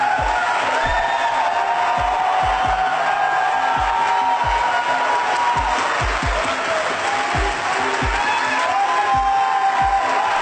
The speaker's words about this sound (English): That is how much applause she gets for saying that.